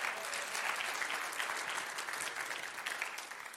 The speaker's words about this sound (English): Thank you, guys. Come on, give them a great clap offering, amen.